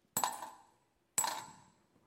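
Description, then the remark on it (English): Two small copper coins drop one after another about a second apart, each landing with a bright clink and a short ringing decay, clear with no voices. “And then this poor widow comes along, reaches into her little bag, pulls out 2 copper coins.”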